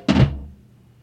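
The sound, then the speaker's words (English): A single heavy drum thump lands right at the start, loud, with a deep boom that quickly fades into a soft low rumble. No voices. “How about a roll to a thump at the end?”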